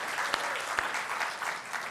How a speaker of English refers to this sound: Man, isn't that awesome? Can we just give him another round of applause? Yeah.